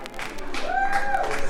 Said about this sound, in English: Clap your hands.